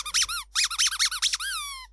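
A rubber duck named Brian squeaks in a quick, wobbly burst: a few high squeals, a short pause, then a rapid string of squeezes ending in one longer squeak that slides downward. No voices.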